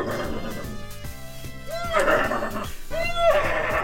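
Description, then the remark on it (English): A voice imitates a sneaky evil horse, letting out two sly, wavering whinnies about a second apart, each rising and falling, over a steady musical backing. “I think we'll do an evil horse. A sort of sneaky evil horse.”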